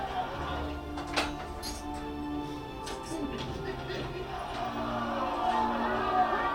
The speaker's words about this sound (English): Oh my God, like, they're cheering him. Because he's so awesome.